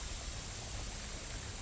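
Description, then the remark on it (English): A steady, unbroken rush of flowing creek water, soft and even throughout with no distinct splashes, heard on its own without any voices. “There are a number of reasons for that, aside or in addition to the sound of the water.”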